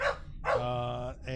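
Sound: dog barking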